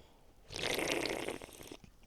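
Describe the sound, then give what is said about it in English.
A single loud slurp of a drink lasting just over a second, a hissing, wet intake of liquid and air, with no talking. “Nice slurps.”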